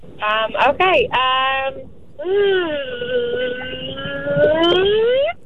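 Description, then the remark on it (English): A radio contest winner on the Andy and Kat show on Magic 95.1 imitates a vacuum cleaner with their voice: a few short choppy vocal bursts, a brief pause, then a long, steady droning hum that slowly climbs in pitch before cutting off. “If you don't mind, we have a rule with this segment that even though you've won the tickets and you're going, we would like to hear your vacuum cleaner sound effect, the best you can do.”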